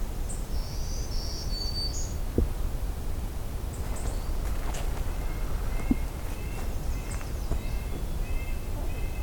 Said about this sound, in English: White breast nuthatch? Sorry, red breast nuthatch, actually.